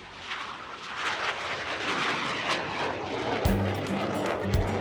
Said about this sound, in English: that sound is probably the sound of a T-6 Texan II flying overhead